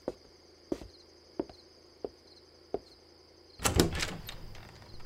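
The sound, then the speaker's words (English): A door is opened at night: five evenly spaced soft knocks, then a sudden rattle and scrape of the door, all over a steady, faint high chirring of insects. “Girl, open the door and bring me with you.”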